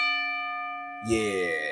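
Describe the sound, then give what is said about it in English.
A bell rung by a bell ringer: its tone hangs and slowly fades, with a clear sustained resonance; partway through, a man's voice starts talking over the lingering ring. “So let me hear that second bell up there.”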